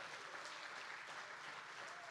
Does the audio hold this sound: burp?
no